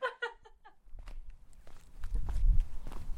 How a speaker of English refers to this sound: I'm currently in the garden. I've just walked across the veg garden to get to my little butternut squash area.